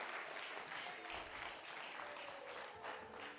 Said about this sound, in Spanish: Y una vez más, denle un aplauso y comenzamos en el nombre de Jesús. Déselo fuerte, déselo fuerte.